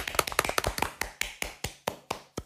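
A few people clap together in a quick, uneven burst of sharp claps that starts dense and thins out over a couple of seconds, with no talking.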